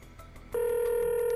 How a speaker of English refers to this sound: I forgot that like my number is on this when I dial.